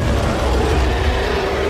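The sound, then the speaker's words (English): A deep, sustained dragon roar, from a grappled dragon being strangled, rumbles continuously for a couple of seconds, loud, with heavy low-end growl and no pauses. “And since you still have him grappled because he failed to get out, he takes 2 points of damage as you're sort of strangling him and more dragon roaring.”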